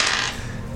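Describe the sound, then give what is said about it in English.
A D100 die is rolled and clatters briefly across a hard tabletop, a bright, sharp rattle that fades quickly into quiet within under a second, landing on 48. “Roll D100 for me.”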